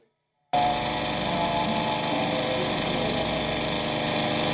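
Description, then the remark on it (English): A lawn mower engine, used by a man mowing his lawn in the film Thief in the Night, starts abruptly after a brief silence and runs steadily with a loud, constant droning roar that holds without change to the end. “Out there mowing his lawn.”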